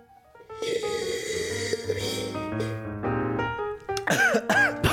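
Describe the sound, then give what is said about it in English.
Music plays steadily, then in the final second a few harsh, sputtering coughs break out in quick succession as someone chokes on a drink that went down the wrong way after a toast. “That went right the wrong way.”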